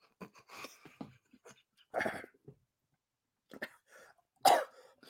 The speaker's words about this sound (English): Oh my goodness! I think I swallowed up one of them whole. Oh no! I'm going to cough that up at some point. It's going to be very horrible.